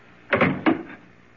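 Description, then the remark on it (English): A door is pulled shut with two quick, solid thuds about a third of a second apart, fairly loud, each fading into a short rattle, with no voices. “I'm going to close this door.”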